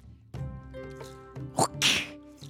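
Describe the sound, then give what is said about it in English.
A whip cracks sharply twice in quick succession, the second snap broader and louder, over a steady droning musical tone; no one speaks. “You hear the crack of the whip again.”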